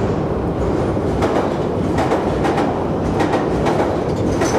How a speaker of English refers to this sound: So on occasion, if we do these tours at the weekend when the Piccadilly line's got, say, engineering works, it often will slow down the trains a little bit.